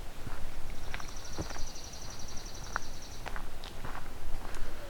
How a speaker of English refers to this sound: Coming up on another pine warbler.